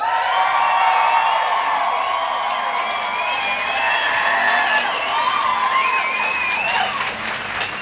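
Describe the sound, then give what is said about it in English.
An audience applauds and cheers steadily for several seconds to pick a singer's song as a favorite, dense clapping layered with shrill whoops and whistles, staying loud throughout before easing slightly at the end. “So, with your applause, pick a favorite, starting with …, ….”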